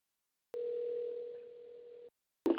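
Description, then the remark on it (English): A phone line's ringback tone on an outgoing call that goes unanswered: one steady, fairly clear ring burst lasting about a second and a half, a short silent gap, then the next ring just beginning. No voices. “I'm calling Sister Garner now.”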